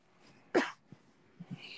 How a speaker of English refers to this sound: I'm sorry, I had to secretly cough.